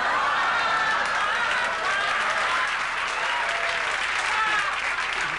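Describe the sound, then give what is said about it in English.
Steady audience applause fills the whole stretch, a dense, even wash of many hands clapping at a constant loudness, with faint crowd murmur mixed in and no single voice standing out. “He turned an ooh into a clapper.”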